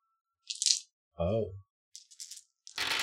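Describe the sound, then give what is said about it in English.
Six dice being rolled for a spirit roll in a game rattle and clatter in several bursts: a short hiss-like shake, a brief voiced murmur, a few sharp clicks, then a loud scattering tumble at the end. “But it's going to be six dice this time.”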